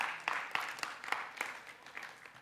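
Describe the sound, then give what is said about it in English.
A standing church audience claps for the Lord in a loose, steady rhythm, sharp bright claps standing out above a continuous wash of softer applause, moderately loud with no voices heard. “Go ahead if you want to clap for the Lord.”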